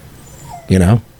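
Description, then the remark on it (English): A terrier named Roxy lets out one short, wavering whimper for more treats, fairly loud, lasting only a moment against a quiet background. “I think we've already started the spiral because she's just not happy. I feel bad for her.”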